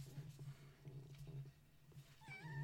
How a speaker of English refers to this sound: Oh my god, your cat. My cat is meowing. She's meowing.